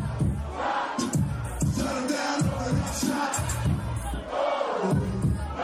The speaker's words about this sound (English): So that's what they were playing when Ronda Rousey got knocked out. So it was off the hook, and they were just cheering and celebrating.